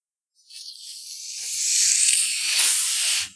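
A bottle of Faygo red pop soda is twisted open, releasing a rising, sustained fizzing hiss of escaping carbonation that swells for a few seconds before cutting off abruptly.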